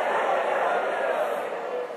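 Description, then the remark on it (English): A dense, steady hubbub of an audience making noisy crowd sounds, many voices chattering and murmuring at once, fairly loud, with no single speaker standing out across the two seconds. “This was a big crowd. This was a noisy crowd.”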